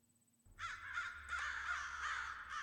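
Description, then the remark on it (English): A Game Boy video game bird sound: loud, harsh crow-like cawing that starts abruptly after a moment of near silence and continues in rough, repeated bursts for about two seconds, with no talking. “Oh my gosh, that's such a good bird sound for a Game Boy.”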